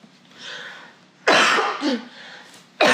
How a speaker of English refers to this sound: Sorry, a little cough-a-roo.